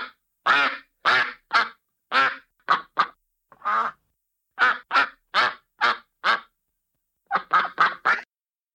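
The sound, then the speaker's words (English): Various ducks quack loudly, a string of around fifteen nasal quacks in uneven bursts and clusters, with brief silent gaps between groups and no talking. “You are going to hear a clip of various ducks quacking.”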